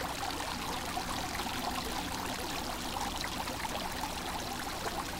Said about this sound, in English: The walls were covered in dark green ivy vines, and in the center of the courtyard was a marble fountain with water pouring out from four different spouts.